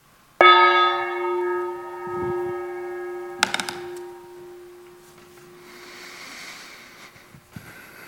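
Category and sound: signal or alarm, gong being struck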